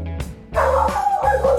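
A dog that has just woken up lets out a short bark, then breaks into a drawn-out, wavering howl, fairly loud, with no one talking over it.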